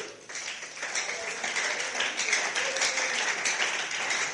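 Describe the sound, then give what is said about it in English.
A crowd claps for Jesus in a dense, steady wash of overlapping hand claps lasting several seconds, bright and fairly loud, with no distinct beat and a few voices mixed in. “Can somebody clap for our wealthy Jesus?”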